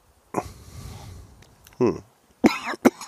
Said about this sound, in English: Well, the retro hill's kind of diminished, too. Although I did have a little cough on it. But. Oh, yeah. I did hear the cough, yes. That was on the second one, because the first one I didn't really get much.